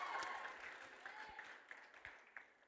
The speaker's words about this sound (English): Who loved Timmy? Give him a clap.